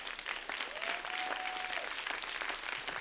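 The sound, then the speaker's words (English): An audience claps steadily for about three seconds, a dense, even wash of hands; a faint sustained tone rises and holds in the middle of the clapping. “Go on and clap right there.”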